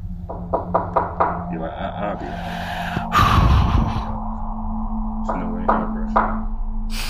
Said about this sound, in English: I hear knocking again.